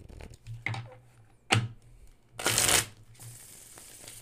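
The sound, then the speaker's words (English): A deck of tarot cards is shuffled: a few brief riffling bursts, then a louder, longer riffle, trailing into a soft, steady rustle. No one speaks. “But here's your shuffle.”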